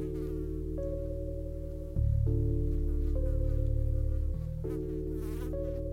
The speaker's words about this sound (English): With the fly buzzing around.